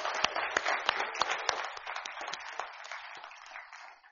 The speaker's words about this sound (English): for the moms in the church that put together the program and work so hard with the kids, and for the kids, let's just show our appreciation. They can hear us clap on YouTube later. Let's just show that.